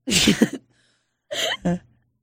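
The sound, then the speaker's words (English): A voice imitates a big, forceful sniff: a loud, hissy inhale lasting about half a second, then after a short pause a brief voiced, breathy sound in two quick parts. “The only person that even stopped to help, walked by it, looked around, saw nobody there, took a big sniff of that pussy, put their face in it.”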